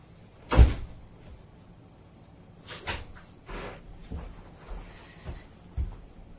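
A heavy door thuds shut, followed by a second set of doors, the double doors of a recording booth, closing with a series of softer clunks and knocks over the next few seconds, with no one talking.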